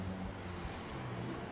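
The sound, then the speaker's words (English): A steady, low rumble of street traffic in Old Orchard Beach, Maine, cars passing in a continuous wash of road noise with no distinct individual pass-by and no one talking. “Listen to the cars going by.”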